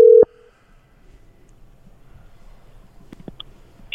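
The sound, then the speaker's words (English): A brief, loud telephone tone sounds at the start, then a quiet line hiss with faint clicks and a few short electronic beeps as a phone call is placed. “We're going to call him”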